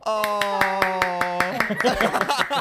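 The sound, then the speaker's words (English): Steady, evenly spaced claps ring out over a sustained droning tone for about a second and a half, then the clapping gives way to talking voices. “Just applauding round again.”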